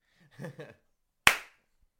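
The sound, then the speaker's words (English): One sharp, loud hand clap for audio sync rings out and decays quickly, following a brief murmur of a voice a moment before. “Clap sync. Fuck, that was loud.”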